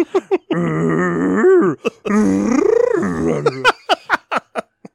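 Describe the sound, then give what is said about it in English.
A voice imitates Chewbacca's sarcastic honking roar twice: long, loud, wavering groans that rise and fall in pitch, framed by a few short clicks and pops. “Sarcastic Chewbacca honks are the great.”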